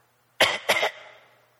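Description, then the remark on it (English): A voice imitates the cough of a girl nearly four years old at 2 a.m.: two quick, harsh bursts close together, loud, with a short tail of room reverberation fading afterward. “And of course, you hear a cough.”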